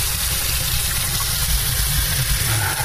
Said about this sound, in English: Gonna fill the water tank with water, since we got everything cleaned out.